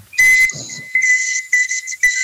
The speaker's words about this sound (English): It's my ability to whistle with my teeth. I thought everyone can do it, no?